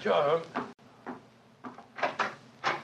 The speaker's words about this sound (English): Mrs. Hudson's opening the door to him now.